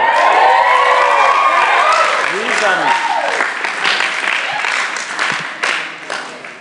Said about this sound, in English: There's a few people that put their hand up. We want to rejoice with them. And a big cheer. A big cheer.